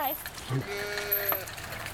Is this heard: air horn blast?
no